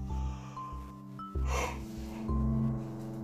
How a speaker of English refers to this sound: Excuse me, I'm sorry. It's about 9 o'clock. I have to go to bed in 30 minutes. So excuse me if I yawned. It's my bad, okay?